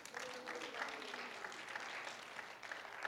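A crowd claps steadily for about three seconds, a dense, even patter of many hands at a fairly loud level, with faint voices mixed in under the applause.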